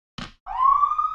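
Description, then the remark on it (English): A short muffled thump, then an alarm siren wails upward in pitch and holds a loud, steady, piercing tone with no one speaking. “Sorry, there's an alarm.”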